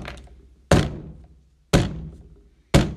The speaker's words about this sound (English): It's the middle of the night currently. And all you guys hear are big footsteps.